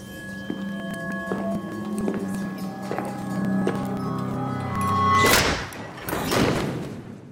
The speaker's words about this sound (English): A chef walks out to the dining area. With the clap of his hands, the cooks stand straight as he gets everyone's immediate attention.